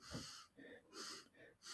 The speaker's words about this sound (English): I could sniff this beer until it's finished.